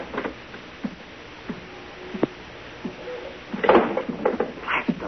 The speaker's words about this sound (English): Now the clouds were beginning to lift, and at the same time, the door opened in the suite and the silhouetted figure of a man entered the room.